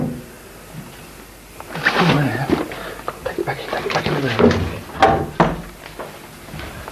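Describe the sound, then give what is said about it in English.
A person speaks briefly while a door is tried and handled, with a few sharp knocking clunks and a firm thud as it shuts, moderately loud. “The doors won't open, and it was when I try.”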